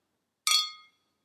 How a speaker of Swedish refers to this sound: Det klirrar bra. Men efterklangen är så tyst. Ja. Är det för att det är något i glaset eller? Jag vet inte. Vad konstigt. Det känns inte... Den är, borde det, så här, är det fake? Den borde klinga ut.